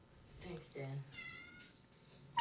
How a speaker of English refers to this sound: Little baby kitten.